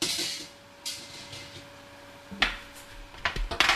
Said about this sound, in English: in Malaysia, most of the household steamers are essentially woks with a rack. If you happen to have a steamer basket, you can use that. But the water has come to a boil, so I'm just going to place the banana paos inside and steam them for 4 minutes.